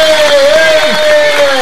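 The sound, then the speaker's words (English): A long, loud, dense wash of crowd cheering and applause as a performer is introduced, filling the whole stretch without a break, with a steady, high, whistle-like tone riding on top. “Long ass applause.”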